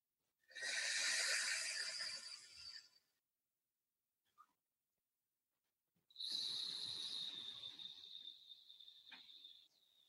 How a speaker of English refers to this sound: So I'm making a restriction with my mouth so I can control that exhalation. And even, you know, doing it once, you know, you feel things slow down a little bit. Even the sound is a positive anchor for me in that one.